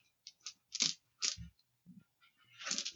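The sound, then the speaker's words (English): A pool of green, yellow and purple dice clatters and tumbles across a hard tabletop in a few quick bursts of clicks and knocks, moderately loud, with no one speaking. “I'm going to let you add an extra yellow die to your pool. You're going to be opposed by two purple dice.”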